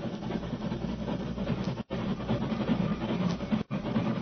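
vehicle, approaching steam train

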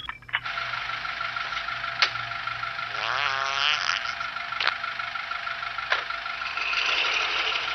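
sound effect, fart sound effect

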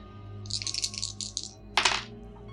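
household object, dice being rolled

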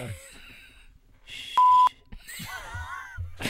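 signal or alarm, censor beep

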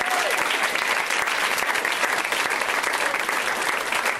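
crowd, audience applause

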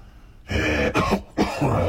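human body sound, cough

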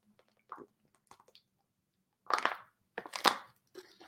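food or drink, sipping water

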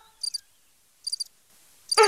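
insect, crickets chirping sound effect

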